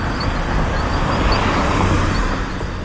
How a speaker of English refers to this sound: Okay, this sound I know is a car.